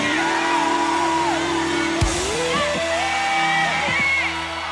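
A large crowd shouts and yells together, each asked to shout for themselves if they need something from God, in a loud, continuous roar of raised voices, with whoops rising above the din and a sharp bang partway through.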